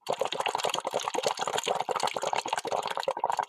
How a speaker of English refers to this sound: So you put a straw and make sure the straw is really sealed well. There should be no air leakage. Take a little cup of water and blow through the straw just like this.